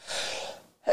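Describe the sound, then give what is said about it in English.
A single sneeze: a long, breathy drawn-in gasp, a brief pause, then a sharp, loud explosive burst right at the end. “I got to sneeze, hold on.”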